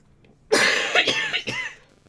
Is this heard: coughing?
yes